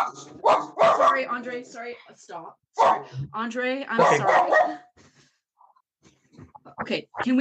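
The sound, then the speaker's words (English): A dog barks repeatedly in loud bursts, clustered in two volleys with a short gap, while people talk over it; things quiet down briefly before more sound near the end. “I have a dog. I understand.”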